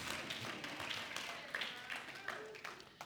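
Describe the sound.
An audience applauds steadily, a dense, fairly loud patter of many hands clapping at once, with faint voices mixed into the noise.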